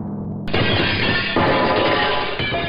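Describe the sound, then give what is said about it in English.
A sudden, loud crash of the collapsing walls of Jericho bursts in after a brief low rumble, then continues as a sustained roar of tumbling debris for a couple of seconds, full, with no voices. “Once they did, everything came crashing down.”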